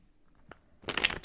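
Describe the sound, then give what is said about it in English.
A brief tap, then a dense burst of papery riffling as a deck of tarot cards is shuffled, loud and crisp with no talking. “So, you're going to hear me shuffling around a bit. So, shuffling my cards.”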